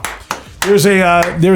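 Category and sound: human body sound, hand clapping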